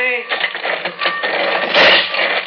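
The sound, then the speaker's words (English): A heavy sliding door grinds and rattles along its track for a couple of seconds, a steady, loud mechanical scraping that swells briefly near the end. “Ah, another one of these sliding doors.”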